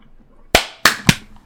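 Three sharp, crisp hand claps in quick succession on a video call, each a loud snapping burst with a brief decay, the last two closer together, following a moment of near silence.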